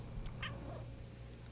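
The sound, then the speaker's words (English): A cat gives a couple of brief, quiet chirping meows in quick succession over a steady low background hum with no talking. “You can hear the chirping. Can you guys hear the chirping when he goes like...”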